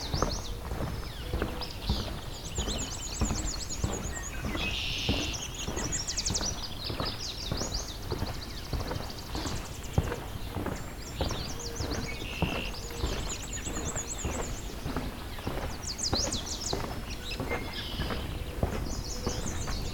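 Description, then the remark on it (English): A swamp sparrow repeats a steady, ringing trill of evenly spaced notes several times, clear, with a regular knocking rhythm running underneath throughout. “Swamp sparrow, the ringing trill.”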